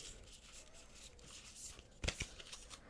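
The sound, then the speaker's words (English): Cards from the Starseed Oracle deck being shuffled for an oracle reading, a soft continuous papery riffling that ends in a brief, sharper burst of slaps as the deck is squared, with no talking. “I'm just shuffling the cards right now.”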